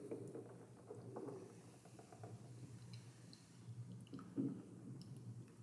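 Someone chewing antacid tablets, a steady run of soft, wet, crunchy mouth sounds with one louder squishy bite near the end. The sound is quiet and no one speaks.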